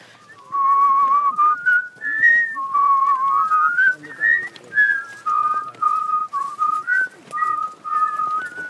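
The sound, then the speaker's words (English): A man from Cork whistles a melodic tune phrase, clear, with pure sustained notes stepping up and down in a steady rhythm, heard alone without talking. “My dad whistled, his dad whistled, I whistle, my son now whistles.”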